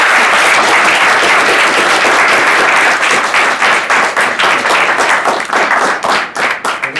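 A crowd applauds loudly and steadily, dense overlapping claps filling the room for several seconds before thinning slightly into more distinct individual claps toward the end.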